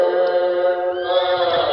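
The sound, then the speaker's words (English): A frightened horse whinnies in one loud, sustained, high-pitched cry with a shrill, slightly wavering tone, lasting nearly two seconds with no voices over it. “Now do you hear it? Even the horses are scared.”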